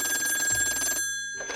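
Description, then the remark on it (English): A telephone rings late one evening with a call from a neighbor: a fast, trilling electronic warble for about a second, a brief quiet, then another ring. The ringing is steady and fairly loud, with no talking. “So I was worried when she called late one evening.”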